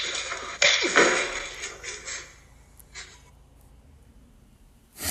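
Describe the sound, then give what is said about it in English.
Two sharp, loud slaps across the face in quick succession, crisp, the second one from a film scene in which Sidney Poitier slaps a white character, followed by a fading hiss and near quiet, then a brief burst of noise at the very end. “That slap that you just heard, that's what that was. In fact, it was two slaps.”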